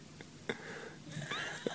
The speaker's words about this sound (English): If you wanted some live cat fighting in the background of the podcast, not even the sexy kind.